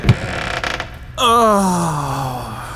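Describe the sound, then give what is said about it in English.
A door creaks open with a long, loud groaning squeal that slides slowly downward in pitch, preceded by a brief rustle and a few faint knocks, with no one speaking. “I'm not even going to comment on the doors anymore.”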